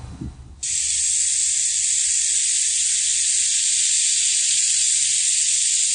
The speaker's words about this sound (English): Here's a butter sculpture of a turkey with a hot bladed knife, and it sizzles through and it sounds amazing.